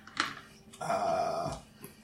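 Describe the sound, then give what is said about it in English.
Two dogs growl: a brief rough snarl, then a louder, sustained growl lasting under a second, with a fainter rumble trailing off and no talking. “There are also these two dogs.”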